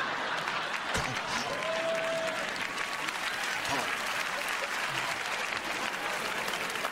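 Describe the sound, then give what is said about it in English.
Steady applause from an audience with women clapping fills the whole stretch, a dense, even wash of clapping hands with a brief tonal whistle or squeal rising above it early on. “See, ladies are clapping.”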